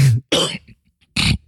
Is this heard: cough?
yes